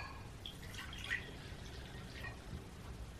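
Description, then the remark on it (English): Water trickles and splashes softly into a wine glass in a steady, quiet pour lasting a few seconds, with faint dripping sounds and no one speaking, as water is set out for a home altar. “Now you're going to need either a bowl, and then you want to add some water. So I have some water here just so I can show y'all.”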